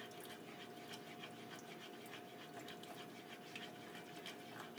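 Milk is slowly poured into a thickening bechamel sauce while it is stirred constantly with a whisk or spoon, giving a continuous soft sloshing with small scraping clicks throughout and no voices.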